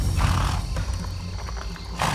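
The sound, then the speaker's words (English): Horse hooves trot in a steady clip-clop rhythm over a low, rumbling outdoor background, with no voices present; Merlin rides Arthur's cream-white mare, Shamray, into the woods at dusk in thick fog. “He rode Arthur's horse into the woods, her cream-white coat blending with the thick fog.”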